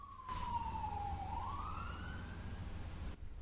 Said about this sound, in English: I don't know if you could hear that, but anyway, the cop cars are coming.